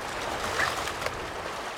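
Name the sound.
river water flowing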